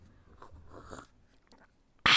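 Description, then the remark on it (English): Soft, sticky chewing-gum sounds as someone completes a bust sculpted from chewing gum: a few irregular wet smacks and squelches, quiet and unhurried, then an abrupt loud burst of noise cuts in at the very end. “I'm completing my chewing gum bust of Incrediman.”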